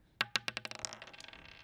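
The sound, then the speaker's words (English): Dice clatter across a hard table: a few loud, sharp knocks followed by quicker, lighter clicks that fade out as they settle. No one speaks. “Roll the dice and ask.”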